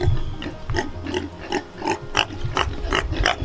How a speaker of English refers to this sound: So yesterday we noticed that our pigs were starting to develop a cough. Some of them had a short wheeze.